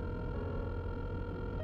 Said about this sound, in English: My adrenaline was shooting through the roof, though, as his phone rang.